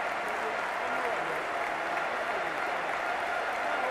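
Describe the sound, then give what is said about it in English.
A large crowd at Napoli's stadium, formerly the San Paolo, applauds striker Fabio Quagliarella, joined by the entire Napoli squad. A dense, even wash of clapping holds at the same loud level for the whole few seconds without rising or fading. “And Fabio still getting the applause here.”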